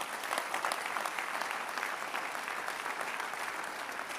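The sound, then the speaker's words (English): An audience at a Christian sermon claps steadily, a dense, continuous patter of many hands at a fairly even level for several seconds with no voices rising above it. “You're clapping in the second house.”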